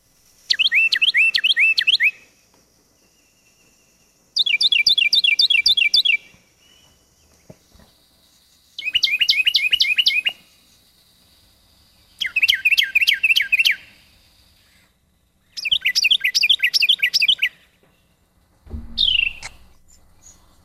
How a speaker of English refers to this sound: And the way I remember the Carolina Wren, it makes a few different sounds. But its primary song is tea kettle, tea kettle, tea kettle. See if you agree with me. Carolina Wren.